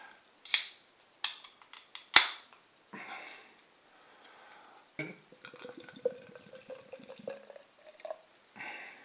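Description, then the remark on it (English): A Garden Brewery cold brewed iced coffee porter pours into a World Beer Festival glass: a few sharp clinks and clicks first, then a steady bubbling, gurgling stream whose pitch slowly rises as the glass fills. No one speaks. “Right, let's get this out into my glass.”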